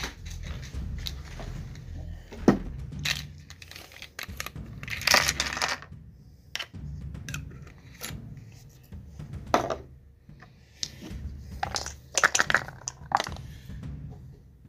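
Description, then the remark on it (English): Rustling and rummaging noises with scattered sharp clicks and clatters as dice are searched for and rolled onto a surface, several distinct bursts over a steady low rumble. “Where's that laboratory dice?”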